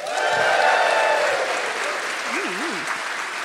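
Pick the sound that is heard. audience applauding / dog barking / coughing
audience applauding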